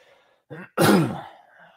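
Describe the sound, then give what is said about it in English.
A single loud, harsh cough into the microphone, preceded by a brief throaty catch, then fading into quiet background noise. “You shouldn't cough in a microphone.”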